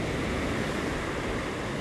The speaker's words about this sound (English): There's some pretty good waves coming in today. I suppose in the 6-foot range. Looks like root beer as they're crashing. And every once in a while, some darn good swells come in the 8 to 10 foot range, I suppose.